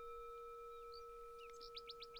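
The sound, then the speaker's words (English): A small bird that had flown into a home chirps indoors, a few scattered high notes followed by a quick series of four or five rapid tweets, clear over a faint steady electrical hum. “So I look up at the bird who had flown in, and this had never happened in the year that I've lived here.”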